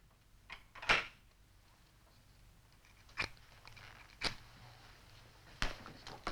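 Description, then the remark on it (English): Several sharp, brief clicks and scrapes of a woman lighting her third cigarette, spaced a second or so apart, ending with a quick knocking sound as the cigarette is knocked out of her mouth. Quiet, with no talking. “And that sound at the end there is Lois lighting a third cigarette, only to have Dan knock it out of her mouth.”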